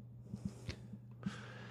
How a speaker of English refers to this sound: It's like he yawned, and the yawn caused him to burp, and then he lost his voice.